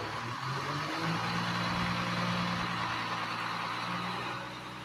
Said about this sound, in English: Is that a diesel truck? It's the garbage man. It is the garbage truck. Yes, it's a diesel it's truck. Not an LLV. It is a garbage truck, ladies and gentlemen. It is a diesel truck.